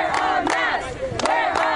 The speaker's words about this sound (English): Several dozen classmates line the fence, chanting their feelings on the matter.